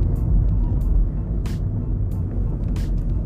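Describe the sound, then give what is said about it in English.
Dense road traffic rumbles steadily, with several short, sharp hissing bursts like air brakes releasing at irregular intervals over the engine noise. “So we've got to awkwardly try and weave past the traffic that is...”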